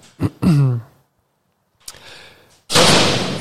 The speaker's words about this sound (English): Jesus, slam the door.